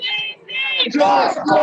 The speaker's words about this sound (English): The now merged crowd, which numbered at least a couple of thousand people, marched back to the Justice Center. For a few minutes, they stood outside, chanting George Floyd's name.